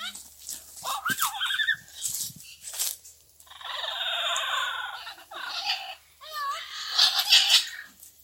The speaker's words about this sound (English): The yellow-headed parrot is highly sought after by Belizeans and Mexicans and Guatemalans for their ability to talk. So they want to be put in cages so they can talk.